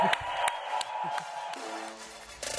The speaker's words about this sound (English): Let's get down a huge round of applause and stand up.